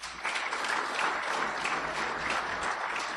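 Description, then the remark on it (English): Steady, dense applause from an audience voting that the item about the pinball machines is the fiction, many hands clapping in a continuous bright crackle that holds at an even, moderately loud level throughout, with no voices standing out. “All right, if you think the item about the pinball machines is the fiction, then applaud.”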